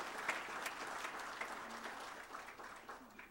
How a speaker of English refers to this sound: Boy, can we have some applause for that?